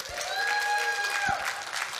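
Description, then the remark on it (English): A church audience applauds steadily throughout, a dense, even patter of many hands clapping, with a thin sustained whistle-like tone riding above the applause, applauding for those who came in the south door through a Christmas light tunnel. “If you came in the south door and had Christmas light tunnel to come through, you give it an applause.”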